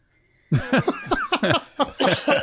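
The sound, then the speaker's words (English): A loud fit of rapid, repeated coughs, about a dozen sharp voiced bursts in quick succession after a short quiet start, with no talking. “I can't wait to delete all of those coughs.”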